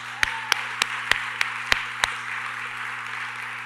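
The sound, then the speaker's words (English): Seven sharp, evenly spaced hand claps for a poet ring out over a steady low electrical hum, then stop abruptly, leaving only the hum and faint hiss; no one speaks. “Let's give him some claps.”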